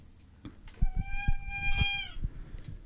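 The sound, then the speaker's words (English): A talking doll gives a single squeaking note, a steady, whiny high-pitched tone held for just over a second, with dull low thumps and knocks scattered around it and no speech. “It was making a squeaking noise.”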